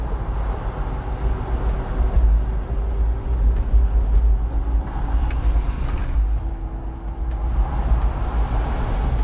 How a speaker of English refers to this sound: Watch out for this truck. It's driving erratically.